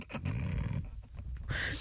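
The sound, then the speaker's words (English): People make gruff, growly woofing noises imitating a dog barking, a continuous burst of rough vocal barks lasting under two seconds. “What's happened to you all? You've gone woof woof.”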